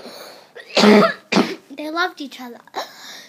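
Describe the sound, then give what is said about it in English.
Two harsh coughs in quick succession, the first longer and heavier, followed right away by a person speaking briefly. “Sorry, a bit of a cough.”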